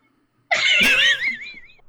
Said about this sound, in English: Did you hear that? Yes. That is how every conversation with her goes. Your cats need to, like, get a job and sponsor this show. They are so fucking loud, every single one of them.